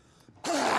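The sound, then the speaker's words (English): After a brief quiet moment, one loud, exaggerated cough bursts out, harsh and breathy with a voiced, throaty edge that lingers until the end. “I didn't know that's how you cough.”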